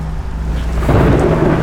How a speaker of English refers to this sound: And pretty much as you drive closer and closer, this storm is rolling over the top of you. First it's light rain, then heavy rain, then torrential rain, and then there's lightning, and then there's thunder, and even hail starts.